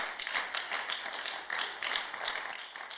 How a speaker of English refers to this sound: Can I get a clap offering in the house?